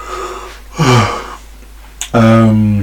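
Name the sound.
yawn into the microphone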